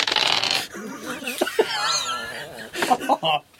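Dice clatter across a tabletop in a few quick, rattling bursts, rolled for a sanity check in a game, while people chuckle and laugh softly in the background.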